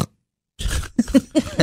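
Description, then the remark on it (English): After a brief silence, a person makes a run of rough, nasal pig snorts, four or five gravelly bursts in quick succession, loud, with no talking. “Snort, pig. Do you understand pig.”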